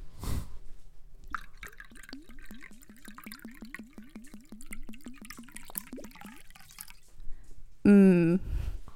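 Liquor glugs steadily from a bottle into a shot glass, filling a triple shot, a quick, even run of about two dozen gurgles lasting several seconds, followed by a short, loud vocal squeal at the end.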